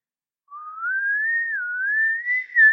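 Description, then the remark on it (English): A single person whistles a short, wavering melody, the clear pure tone gliding up and down steadily for a couple of seconds after a brief silence, alone with no talking. “My grandfather, …, was a comical character whose whistled tunes carried through the wind across our countryside home.”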